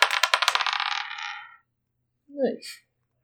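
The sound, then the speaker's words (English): Dice rolled for a stealth check clatter and tumble across a table in a quick run of sharp clicks that speed up and fade over about a second and a half, followed by a brief spoken word. “If this doesn't roll good, I'm putting this dice away.”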